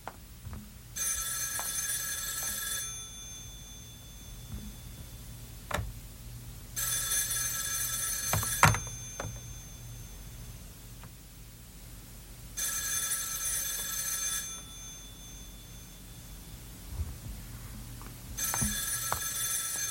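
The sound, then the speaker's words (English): A telephone bell rings in regular bursts, about four rings roughly six seconds apart, each a bright metallic trill lasting a couple of seconds, with a low background hum and a few faint knocks between rings. “now he's going to answer the phone.”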